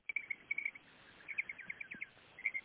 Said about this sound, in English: But there are birds around the house, and they're very loud, especially at night. They all seem to come out.